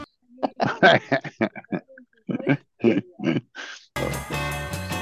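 A rapid run of loud pig oinks and grunts in choppy bursts, cut off after a few seconds as upbeat music kicks in.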